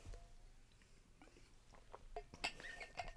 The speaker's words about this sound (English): Let me just have a sip of water because my throat is getting dry.